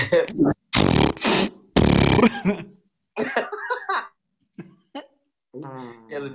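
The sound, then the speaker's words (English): A voice imitates a fart with two loud, raspy blown bursts, followed by a short pause, then softer sputtering vocal noises and brief voiced sounds. “I was sitting on a couch and a fart came out.”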